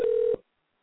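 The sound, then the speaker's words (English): A single short, steady telephone tone, like a ring or dial signal heard down a phone line, sounds clearly for about a third of a second and then cuts off into silence, as a call is dialed during a live show. “I'm going to try and be in two places at once, so you must bear with me because I'm trying to dial and everything else.”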